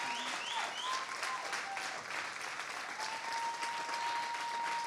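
An audience applauds steadily, with dense, continuous clapping that fills the space for several seconds, a few faint whistles and cheers rising over the crowd's applause.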